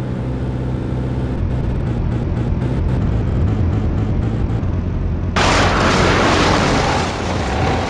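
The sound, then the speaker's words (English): A loud airplane engine drones and sputters in rapid pulses as the plane's second engine fails, then an abrupt explosive burst erupts into a harsh, sustained roaring hiss that continues to the end. No voices. “It seems as though we have lost our second engine.”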